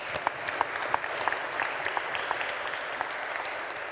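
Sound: audience applause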